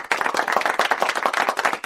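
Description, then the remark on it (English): A burst of applause cued as a sound effect: many hands clapping in a dense, continuous patter, fairly loud, with no voices over it. “I'm going to have to cue the applause. Can we cue the applause?”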